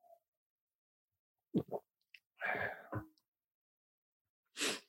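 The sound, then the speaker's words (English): Wet sputtering and snorting through the nose after a sip of drink went up the nose, in a few abrupt bursts: two quick snorts, a longer spluttering cough, then a final sharp nasal blast after a pause. No one speaks. “I taste Elijah after I've sipped it through my nose.”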